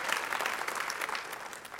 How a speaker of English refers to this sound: I think you ought to give God a great big hand clap of praise for seeing you through to this point where you are right now.